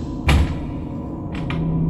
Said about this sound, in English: I rap on the door. Once.